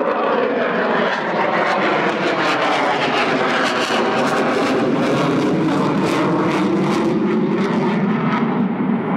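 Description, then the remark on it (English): The engine of a replica early airplane runs loud, a steady droning roar with a pulsing rhythm that holds for the whole stretch. No voices can be heard. “And with the exception of this one's engine, everything about it is accurate, in control system and so forth.”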